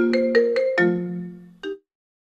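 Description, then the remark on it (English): A phone ringtone from a phone hooked up to a studio computer plays a short, bright melodic phrase of quick chiming notes, lets the last one ring out, then adds one final note after a brief pause. It's clear, with no talking. “So somebody's got their phone hooked up to this computer.”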